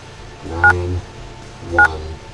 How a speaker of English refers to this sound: I grabbed my phone with sweaty palms. I slowly dialed a number in my phone.